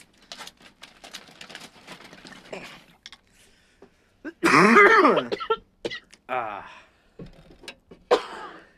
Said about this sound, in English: the synchronized coughing. Once we get big, this is where we'll put in sponsor breaks. Just like us coughing.